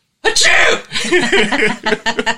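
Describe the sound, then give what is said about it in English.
A sudden, loud, breathy sneeze from a woman bursts out, then trails into voiced, wavering sounds and a few quick, rhythmic chuckle-like puffs; the sneeze was aired on a radio station. “It was a good sneeze, yeah.”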